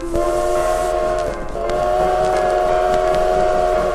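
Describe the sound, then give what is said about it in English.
A loud, sustained train whistle blows in steady harmonic tones, briefly dipping and resuming, over the continuous rumble and clatter of a rolling train on the rails. “Look at me. I'm the train conductor.”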